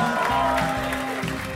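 A steady wash of clapping from a crowd, fairly loud and continuous throughout, with low sustained tones running underneath it.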